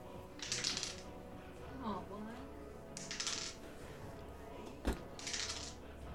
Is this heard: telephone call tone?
no